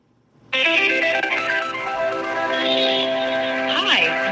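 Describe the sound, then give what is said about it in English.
A phone call to a law firm's number rings through a phone's speakerphone, a steady electronic ringing tone that starts after a brief silence and holds fairly loud, with a short pitch wobble near the end. “I'll just call it right now.”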